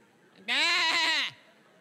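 A single sheep bleats once, loud, a wavering, quavering cry lasting under a second, with quiet background before and after.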